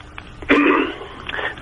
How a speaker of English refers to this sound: Yes, please. You've given your cough, you've given your so please introduce it for us.